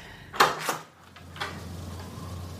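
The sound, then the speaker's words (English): A door at the end of a corridor opens: a couple of sharp latch-like clacks followed by a softer thud, then a low steady hum fills the quiet room. “I open the door and step into the room beyond.”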